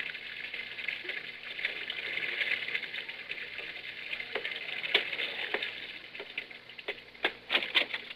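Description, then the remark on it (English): Water runs steadily into a bathtub at Jack Benny's home in Beverly Hills in the morning, a continuous bright hissing rush that lasts throughout, with a few sharp clicks and splashy pops toward the end. No one speaks. “It's morning, and Rochester is running the bath.”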